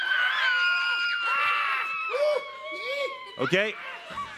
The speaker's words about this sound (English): And the first thing it said was, you got to scream as loud as you possibly can at it, okay? So wait for it. When it gets on stage... Scream! You got to scream.